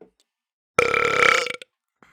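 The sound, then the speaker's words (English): A single loud, drawn-out burp, deep and resonant, lasting nearly a second, with near silence before and after. “I marked that before I burped.”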